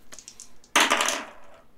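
household object, two dice being rolled

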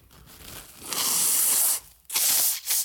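human body sound, blowing nose

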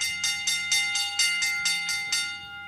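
signal or alarm, bell ringing

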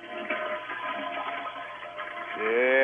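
household object, toilet flushing

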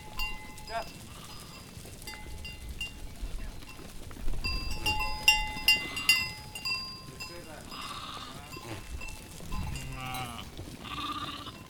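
animal, sheep bleating

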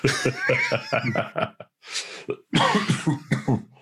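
human body sound, man coughing

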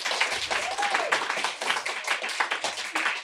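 crowd, audience clapping in response

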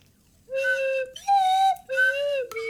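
sound effect, slide whistle being played

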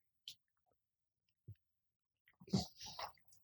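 food or drink, sipping whiskey

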